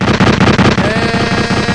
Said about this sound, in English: So now you want the gunshots, right? I want my gunshots, man.